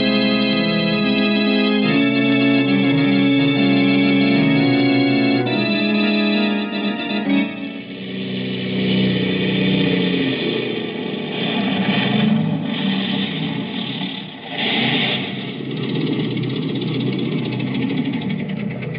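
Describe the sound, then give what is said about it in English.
A small propeller plane with an automatic starter: its engine sputters to life with a steady droning hum, then swells into a loud, rough roar as it powers up for takeoff. No voices are heard. “Thank heaven this plane's got an automatic starter.”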